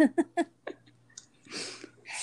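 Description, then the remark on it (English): Quick breathy catches lead into a sneeze, a sharp hissing burst of noise followed by a second short spray of air, fairly loud with no talking. “Bless you.”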